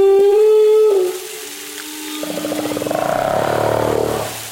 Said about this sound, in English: That's the title Kathy Turco gave this recording she made of a young humpback whale practicing his mating song in a marine sanctuary in the deep Pacific off Mexico.